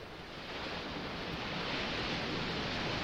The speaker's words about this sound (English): You hear the waves crashing at the shore. Or is it the waves crashing at the shore?